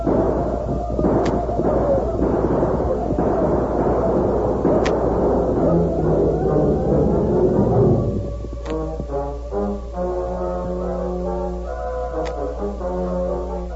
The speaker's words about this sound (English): Hiram Lynn, leading 20 or more men, galloped into the village with guns in action.